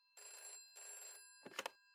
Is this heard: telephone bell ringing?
yes